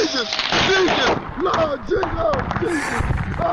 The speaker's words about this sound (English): So they were setting off fireworks, and then they just start a fire.